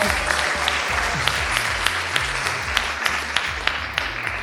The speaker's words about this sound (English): Big welcome to everyone in the audience. We're so excited to be in Miami at the Miami Book Fair for the first live episode of the Fiction Nonfiction Podcast with... You can applaud for that so we can hear you.